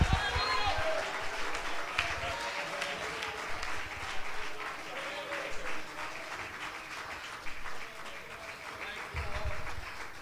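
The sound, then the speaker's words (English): A crowd claps steadily and rapidly, clapping their hands and shouting in praise to God, while voices shout and cheer over it, a dense, loud, continuous wash of hand claps and raised cries lasting throughout. “And the Bible says not only to clap, but can you add a shout to your hand clap?”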